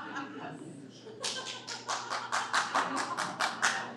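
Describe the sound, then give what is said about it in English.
After a brief murmur, a crowd breaks into steady rhythmic clapping in unison, around a dozen sharp, evenly spaced claps building in loudness. “And clap.”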